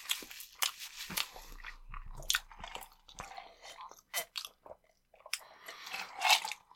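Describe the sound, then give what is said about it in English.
Someone chewing shredded chicken from a taco truck with the mouth open, a series of irregular wet crunches and smacks, fairly loud and uneven in rhythm, with no talking over it. “The weirdest thing about this chicken is that it looks like I'm eating shredded carrots.”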